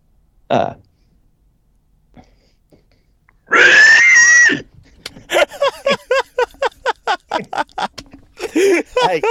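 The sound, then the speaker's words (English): A person imitates a pig with one loud, shrill, drawn-out squeal lasting about a second, preceded by a brief grunt and followed by a quick run of choppy, laughter-like bursts. “So this hog, give us a pig squeal.”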